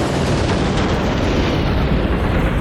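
A violent car crash impact: a loud, dense burst of crunching noise that roars on steadily for a couple of seconds, its harsh upper hiss slowly dulling. No one speaks.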